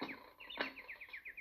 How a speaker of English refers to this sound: And shut the window. That bird's giving me a headache.